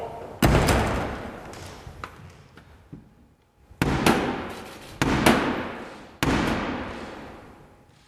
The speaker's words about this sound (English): Blackrod on her way to summon the MPs. The monarch's representative. And in the tradition, we'll have to knock on the door of the House of Commons. Close the door!